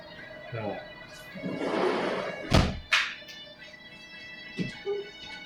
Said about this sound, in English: Alright, let's shut the fucking door, because... Jesus Christ.